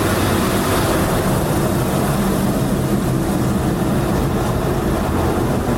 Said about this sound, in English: And now the clean, fresh water is pouring down the front windscreen. And the soapiness is all gone.